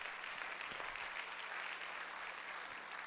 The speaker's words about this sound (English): I love to hear that golf clap at least once every Sunday.